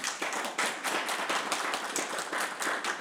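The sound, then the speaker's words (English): An audience applauds the panelists of a panel discussion titled Movement Towards Freedom Now, a dense, steady wash of many hands clapping with a bright, crackly texture that holds at an even, moderate level throughout, with no voices over it. “Let's give our panelists a big round of applause.”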